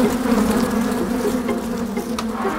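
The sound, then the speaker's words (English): A dense, continuous drone of many bees buzzing at once, an agitated swarm erupting from an occupied hive knocked by a thrown stone, holding a steady, loud hum with slight wavering throughout and no voices. “seeing those elephants running away from real, really disturbed bees”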